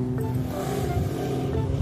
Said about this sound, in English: We were across the street from my car. It was up the road a bit, in the direction of a police cruiser whose lights were flashing. But racers were speeding by, making it impossible to cross the street.